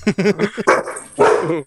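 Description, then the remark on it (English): A dog barks loudly, a quick run of four or five sharp barks followed by two longer, drawn-out barking yelps, with no talking. “Yeah, and the dog's barking.”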